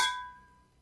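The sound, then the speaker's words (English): A single bright clink of wine glasses touching, followed by a clear, high ringing tone that slowly fades away. No one speaks. “Let's give it a clink.”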